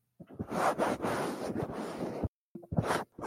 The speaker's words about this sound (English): Jesus, put your windbreaker back on. What the fuck? I was trying to clean up the microphone. It sounded like you were taking off a members only jacket. I was.